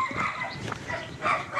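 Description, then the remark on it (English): A dog gives a couple of short, yelping barks, one near the start and another toward the end, with no one talking over it. “Oh, dear, I'm about to be attacked by a dog, ladies and gentlemen.”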